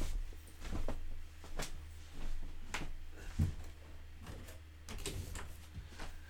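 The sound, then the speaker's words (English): A door is handled and pushed shut: a handful of sharp clicks and knocks spread over several seconds, with one heavier thump as it latches, over a steady low hum. “Why's my door cracked? Why didn't he close that shit back?”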